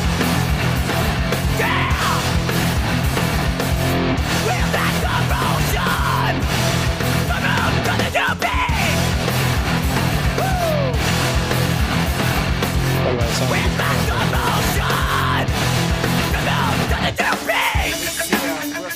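Loud, dense hardcore punk with pounding drums, distorted guitars and raw screamed vocals, playing continuously at full volume with brief breaks and abrupt shifts in the arrangement.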